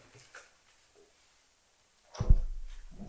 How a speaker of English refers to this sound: would you mind opening this water for me?